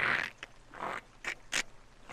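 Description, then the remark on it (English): Scissors cutting through cloth: a handful of dry, crunchy snips and scrapes in an uneven rhythm, some longer and rasping, others short and sharp, fairly quiet, with no voices. “As someone is cutting through cloth, Fizzy is sneaking their way over to Amador Bayo's room.”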